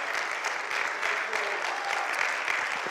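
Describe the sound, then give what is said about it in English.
A church audience claps their hands in worship during a sermon in a dense, continuous burst of applause, many overlapping claps forming a steady bright wash with no pauses, fairly loud throughout. “I wish you would clap your hands this morning.”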